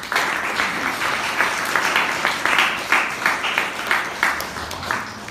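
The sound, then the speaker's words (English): A round of applause for the Chennai Toastmasters Club at its 675th meeting: steady dense clapping from a group with a rapid, slightly uneven rhythm, holding at a fairly loud level throughout with no talking over it. “So, our Chennai Toastmasters Club deserves a big round of applause now.”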